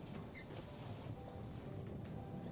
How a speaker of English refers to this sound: The sloshing sound of waves crashing against the hull of the ship accompanies the howling winds.